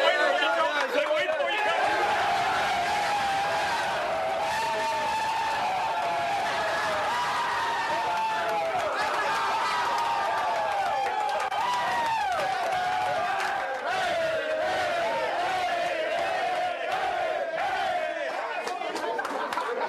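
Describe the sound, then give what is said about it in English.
A team celebrates in a locker room after the game as Lon Kruger walks in, about to be doused with water and urged to dance: many voices shout, whoop and cheer over one another, loud and continuous for the whole stretch, with no single voice standing out for long. “This is Lon Kruger walking into the locker room. After the game, he's going to get doused with a bunch of water. They're going to try to get him to dance.”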